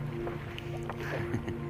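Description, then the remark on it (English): Steady low engine drone of a boat underway, with a constant hum and occasional soft knocks and splashy rustles over the water, heard from on board. “Are you both going to go down the same side of the boat, yeah?”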